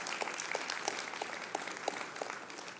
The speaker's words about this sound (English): And she said, over 12,500 this year, which is amazing. And it's worth clapping.